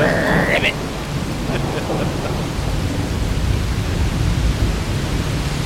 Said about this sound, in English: It's like a big argument between the wind, the lightning, and the rain.